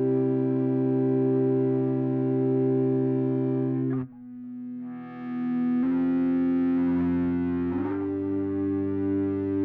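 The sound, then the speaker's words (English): Three guitar parts played with an e-bow, a small device that vibrates the strings without touching them, hum as sustained drones with rich, buzzing overtones, shifting to new held notes a few times, dipping briefly in the middle, then swelling back. No one speaks. “So here's three different guitar parts played by an e-bow.”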